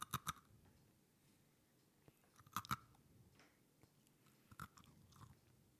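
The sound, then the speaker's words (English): Crisp crunches of someone biting into a butter snap biscuit, arriving in three sharp bursts of two or three cracks each, separated by quiet chewing pauses, with no talking. “Compare the crunch. You go first. This is a butter snap.”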